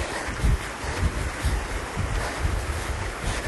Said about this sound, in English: Ooh, we got a nice little creek next to us.